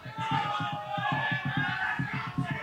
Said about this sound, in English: They're just screaming shit out in the crowd.